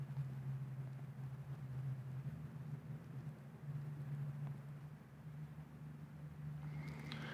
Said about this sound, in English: And the noise from that logging truck is even louder than the rush of the creek. The logging truck is miles away, and the creek may be 50 feet.